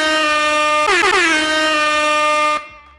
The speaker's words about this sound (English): There you go. That is an air horn, but that's fine.